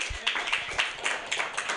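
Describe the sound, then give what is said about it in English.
A crowd applauds Jesus showing up to his roast, a short, steady burst of dense, bright clapping with a few scattered louder claps, holding at a moderate level throughout. “Round of applause for Jesus showing up to his roast.”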